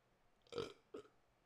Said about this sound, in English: I got a burp.